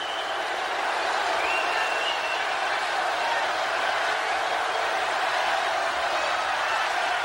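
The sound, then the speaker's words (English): A large arena crowd of about 15,000 people roars and chants at Mr. McMahon, a steady, dense wall of many voices blended together that holds at a loud, even level throughout, with no single speaker standing out. “You hear this crowd chanting at Mr. McMahon.”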